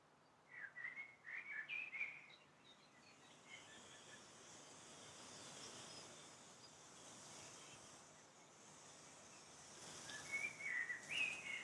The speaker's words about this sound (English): You hear the sweet birds gently chirping and singing their songs.